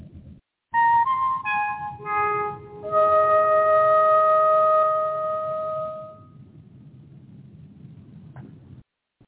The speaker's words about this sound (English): Everything ready? You're on the dark side of the moon. Play the five tones.